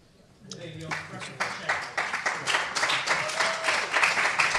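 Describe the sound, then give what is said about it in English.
An audience breaks into applause that swells and holds steady, a dense patter of many hands clapping, with a brief voice from the crowd calling out a comment just as it begins. “And for the benefit of those listening, there was a comment from the crowd during that applause, which was,”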